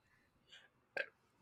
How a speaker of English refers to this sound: Ew! A little bit. It's like an inverted burp or something. Those ones suck. It was painful.